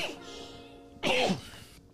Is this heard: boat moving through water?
no